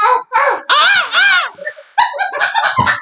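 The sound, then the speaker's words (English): A person imitates a monkey's screaming with a series of shrill, harsh, wavering shrieks, several loud bursts in quick succession, separated by brief gaps. “That monkey screamed.”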